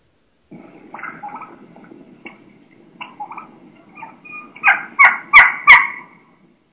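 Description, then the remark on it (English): A young wild turkey hen makes high-pitched keeking calls, starting with soft, scattered chirps and building to three or four loud, sharp keeks near the end, with no talking. “And you're going to hear a real, in my mind, young hen, and she's going to have a real high pitch. You know, she's going to be doing quite a bit of keeking, you know, some high pitch sounds, and it's just awesome.”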